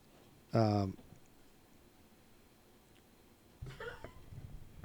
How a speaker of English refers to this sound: Dog's coughing. Dog's coughing. Yep.